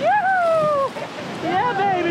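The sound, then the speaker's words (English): Loud, steady rushing of icy, turbulent whitewater on the Kern River fills the whole clip as a raft is paddled through the Powerhouse rapid, with voices shouting or calling out over the roar in two bursts. “Millions of gallons of white foaming water swirl around us.”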